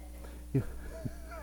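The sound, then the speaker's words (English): A person briefly imitates a cat's meow: a short, clipped vocal cry followed by a softer second sound and a faint rising tone, fairly quiet against a low background hum. “And the cat just looks at you and goes, "Ah."”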